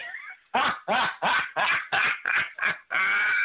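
A dog barks loudly, about seven rapid barks in quick succession, ending in a longer drawn-out yelp, with no one talking.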